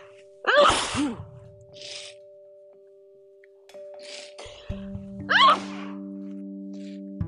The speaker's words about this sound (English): Okay, that's it. We done. I think I'm done sneezing.